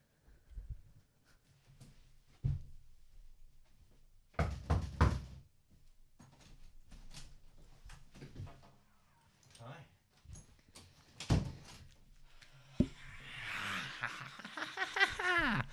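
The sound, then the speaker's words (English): A few sharp, hollow knocks on a door land at uneven intervals, some in quick clusters, with faint muffled voices and room noise between them and a higher voice near the end. “Okay, I'm gonna go and knock on it.”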